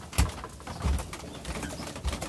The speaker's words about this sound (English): You want to listen to my creaky bed creak? Jeez, oh, my God. This is what it sounds like when I get in bed.